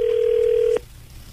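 A steady electronic phone tone, like a line ringing after dialing, holds for under a second and then cuts off abruptly, leaving faint background hiss. No one speaks.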